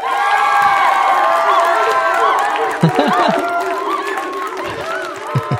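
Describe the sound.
A crowd cheering sound effect: many overlapping voices whooping and shouting together in a dense, sustained roar that barely dips for several seconds.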